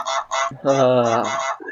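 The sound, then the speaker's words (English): A goose honks loudly in a rapid burst of harsh, nasal calls, the middle one drawn out and strained, with no talking over it. “Hold on, I gotta sacrifice the goose.”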